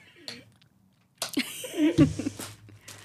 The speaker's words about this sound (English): It is going to sound nice on the microphone. All this munching. An ASMR episode.